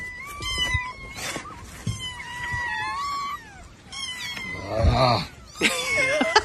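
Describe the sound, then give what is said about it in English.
Several kittens meow and wail over one another in the open trunk of a Honda car as a man tries to put them in during a rescue, high thin cries overlapping continuously, with a louder burst of distressed yowling near the end and faint rustling underneath. “because every time he has the trunk open, every time he puts one cat in, another one jumps out.”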